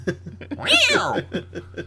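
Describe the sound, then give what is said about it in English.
Tommy Davidson imitates an angry, yowling cat meow: one drawn-out, rising and falling wail, loud, with short throaty bursts before and after it. “if you gave your cat a mohawk, that's what it would sound right. like. You know, that would be its reaction. So, yeah, that's a human...”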